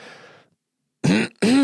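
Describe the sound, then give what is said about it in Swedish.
A loud throat clearing in two quick harsh bursts, the second following right after a brief gap, heard alone after a moment of near silence. “Hostharkade.”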